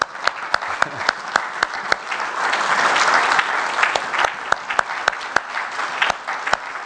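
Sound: audience applauding mothers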